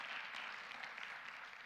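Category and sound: crowd, audience hand clapping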